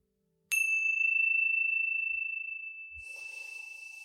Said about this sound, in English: And when you hear the sounds of the chime, coming back into this space.